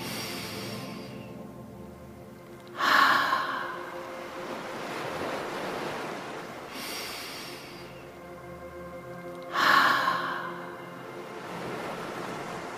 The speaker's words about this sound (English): Breath in through your nose. Open your mouth and let the air come out like the ocean. Let's try 2 or 3 more gentle ocean breaths.